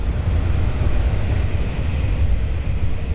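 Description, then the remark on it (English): A train closes its doors and rumbles on steadily, with a deep continuous roar and a thin high-pitched whine of wheels or motors running over it. No voices. “The train closes its doors and rumbles on.”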